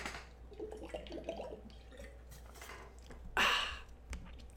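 Quiet mouth sounds and small wet slurps as someone sips water, then a brief louder gulp or swallow around the middle before settling back to a low hum.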